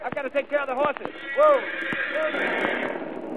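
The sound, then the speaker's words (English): Horses stamp and clip-clop, a handful of sharp, irregular hoof knocks spread across a few seconds, with a rising and falling vocal cry and a steady background hiss. “I've got to take care of the horses.”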